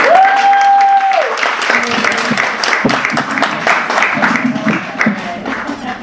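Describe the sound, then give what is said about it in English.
An audience breaks into a sustained round of applause, dense rapid clapping filling the whole stretch at steady loudness, with a brief whistle-like tone near the start and some crowd voices mixed in. “Thank you for a round of applause.”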